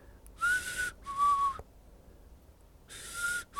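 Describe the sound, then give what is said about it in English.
A person whistles three breathy, airy notes with pauses between them, imitating a weird whistle heard on a recorded lecture; each note is clear, the second held slightly longer. “But I could hear something on there. This weird whistle keeps. It goes something like this, like.”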